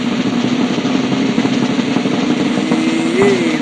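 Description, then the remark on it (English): A steady, rapid drum roll announcing the winner of an award rumbles on without a break for a few seconds, loud and even throughout, with no voices over it. “And the winner, as chosen by you, the reviewers, at JB and Benny Blue on our social media, for the You Fooled Them, Don't Be Dumb Award, with a drum roll.”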